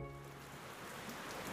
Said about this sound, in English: Wow. That's actually raining a lot. Yeah. It has been raining all day.